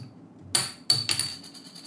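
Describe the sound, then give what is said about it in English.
A coin is flicked with a bright metallic ping, then lands with a couple of quick clinks and a thin ringing tone that fades. No one speaks. “Heads The Conjuring. Tails Insidious. Now, what is Heads? Heads is the whale. Tails is the black side.”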